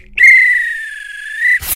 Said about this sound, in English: If this were a real bit of extra time, this is when the ref will blow the whistle because it's finished.